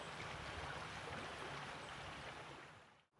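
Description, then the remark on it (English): Steady rushing of flowing river water fills the whole stretch with a dense, even wash of sound, fading out abruptly at the very end. No voices are heard. “The field's opening out now, and there's some lime trees dotted around, and the river's on my right”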